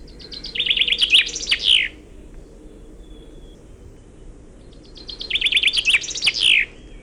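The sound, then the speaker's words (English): A finch sings two bright, rapid songs, each a fast trill of high notes ending in a distinct flourish known as a Walserzang, or Wallonian song ending, with a pause between them over a low, steady background hum. “Finconeers call this a Walserzang, or in English, a Wallonian song, or a French song.”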